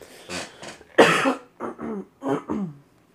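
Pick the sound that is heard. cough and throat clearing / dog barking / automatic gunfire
cough and throat clearing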